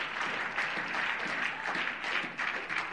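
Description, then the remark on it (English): A church audience claps together after a prayer, giving the Lord a hand clap of praise as they are seated: sustained, dense applause, steady and fairly loud for the full three seconds with no voices standing out. “Everybody say amen and give the Lord a hand clap of praise as you're seated.”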